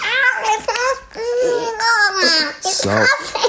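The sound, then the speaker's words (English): A man's voice imitates a concertina played very fast, miming playing an invisible one with his hands, making a stream of wavering, reedy tones that swoop up and down in pitch with quick breaks between bursts. “is playing a concertina very fast with his hands, an invisible one, and he sounds...”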